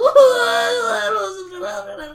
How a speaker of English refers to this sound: Stinko covers his head with his arms and whimpers.